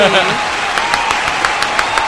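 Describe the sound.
One person claps hands in a steady, even rhythm, about nine crisp claps spaced evenly apart, starting a moment after a brief murmur of a voice at the very beginning.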